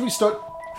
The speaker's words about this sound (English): What the fuck? Phone!